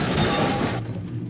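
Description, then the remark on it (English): A wagon breaks free from its reins, smashes into a horse, then tips over and crashes heavily onto its side: a loud burst of splintering, clattering impact noise that rumbles for under a second, then quickly thins out into fading debris. “The wagon continues forward, breaking free from the reins and smashing into one of the horses, killing it instantly as it tips over and crashes on its side.”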